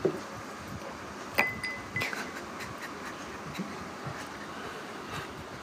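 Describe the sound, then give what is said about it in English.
Liquid pours steadily into a glass, a continuous splashing hiss, with a bright clink of an ice cube near the start and a brief ringing tone before the flow carries on. “The pouring, and then the bloop.”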